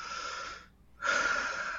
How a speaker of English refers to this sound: The breathing comes.